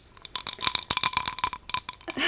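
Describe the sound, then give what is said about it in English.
Ice cubes clink and rattle against a glass in a quick, irregular flurry of bright, ringing taps, ending with a brief swirling sound. No one speaks. “Should I try and edit out all of the clinking clinking of our ice?”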